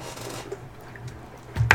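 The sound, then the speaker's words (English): Someone drinks water from a plastic bottle: a soft crinkly rustle, then a quick pair of louder gulping, sloshing sounds right at the end, with no one speaking. “Guess I'm drinking the whole water now.”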